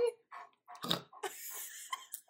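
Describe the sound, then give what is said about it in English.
Dogs snort and grunt in a quick, uneven string of short, rough, breathy bursts, with one louder, harsher snort near the middle and no talking. “I can't with these dogs. We may have to separate them.”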